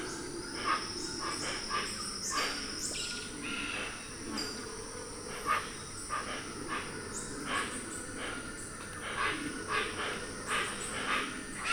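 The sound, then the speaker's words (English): Hoatzins, pheasant-like tropical birds, give harsh, raspy chirrs from nearby shrubs in a steady run of short bursts, layered over a constant high insect drone. “The howlers still sound off in the background, and pheasant-like tropical birds called hoatzins give harsh chirrs from nearby shrubs.”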